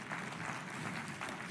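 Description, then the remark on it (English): A church audience claps as a clap offering of praise to the Lord, a dense, steady wash of many hands applauding together with no pauses, fairly loud and even throughout the short stretch. “Come on, give a clap offering of praise to the Lord.”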